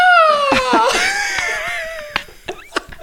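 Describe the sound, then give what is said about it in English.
A person mimics an eagle's screech: a loud, shrill, wavering cry held for about two seconds and fading out, followed by a few sharp clicks. “We're gonna be bothered by eagles. All you're gonna hear is.”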